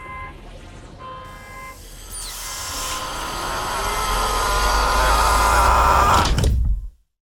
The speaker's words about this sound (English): Even the whoosh of pressurized air being sucked out and obliterated by the vacuum of space sounded just like the movies.